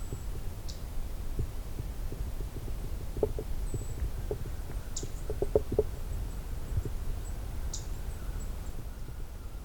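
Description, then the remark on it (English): A few sharp, high tick call notes of a black-throated green warbler, spaced irregularly several seconds apart and fairly faint, over a constant low rumbling background with some soft clicks. “It also ticks like this.”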